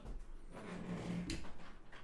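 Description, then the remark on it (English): An office door squeaks open with a drawn-out, low groaning creak that wavers and rises slightly in pitch midway through, followed by a brief scraping thud. “The door to my office is so squeaky.”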